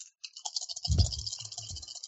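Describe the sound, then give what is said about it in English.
Several dice clatter and rattle across a hard tabletop during a game in quick, uneven clicks, with a heavier thump partway through as most of them fall off the table, then a few softer knocks as they settle. No one speaks. “And most of the dice went off the table.”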